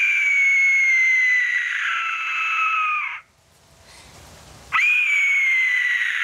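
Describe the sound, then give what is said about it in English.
A loud, sustained, high-pitched eerie scream, harsh and wavering, cuts off briefly for a rough breathy gap, then returns abruptly just as strong; no talking. “Which it sounds like, if you haven't seen the movie yet, it sounds like a fucking like whatever they use for like a mummy or zombie like scream in a movie.”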